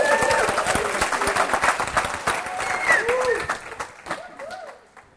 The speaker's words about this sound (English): Welcome back. It's worth a round of applause.